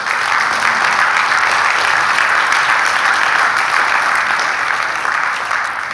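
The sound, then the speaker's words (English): A church audience applauds steadily after listener numbers of 275,000 are announced, a dense, even wash of clapping that stays loud for the whole stretch, with a faint murmur of voices underneath. “And while I appreciate it and say thank you for that, I'm not saying that for applause or anything directed here, because this is a group effort and it's something that we're all a part of.”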